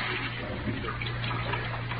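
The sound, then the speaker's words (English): Tap water runs steadily into a sink, a continuous, even rush with a faint low hum beneath it, moderately loud, with no voices. “I emptied the rest of the poison into the sink and let the water run for a minute.”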